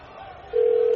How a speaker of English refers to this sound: If your phone's ringing right now. Come on.